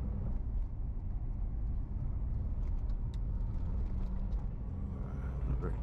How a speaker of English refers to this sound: sorry, I was just followed by a big truck. I tried to avoid him before I turned.